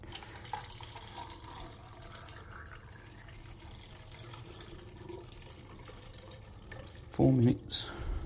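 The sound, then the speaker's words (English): Rodinal film developer, diluted 1 to 25, pours in a steady stream into a film developing tank for several seconds, with a brief louder knock or voice-like burst near the end. “Right, that's ready to go, and I'm ready to pour.”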